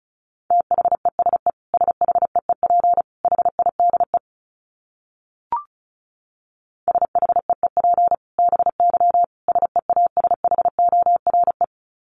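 Rapid bursts of a single steady high-pitched tone keyed on and off in quick Morse code dots and dashes at 35 words per minute, two long runs separated by a brief pause and a short click, with no voices.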